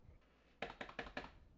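Four crisp clicks of typing on a computer keyboard land in a steady, evenly spaced run, distinct, after a brief quiet stretch with no voices.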